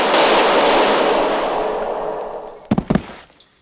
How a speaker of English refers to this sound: it was a gunshot in a sewer beneath Vienna that was the end of Paul Citrone